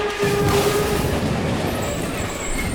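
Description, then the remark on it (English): A train wreck sound effect: a loud, sustained roar of rumbling, clattering noise with a shrill metallic squeal near the start, filling the whole moment with no voices. “A complete train wreck?”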